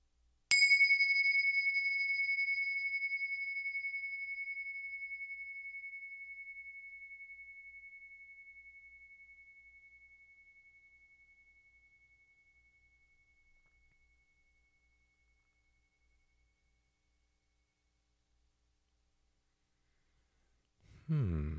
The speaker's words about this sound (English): let's settle in with the lovely bells. I'll ring them, you listen, and follow the sound all the way until it dissolves into silence.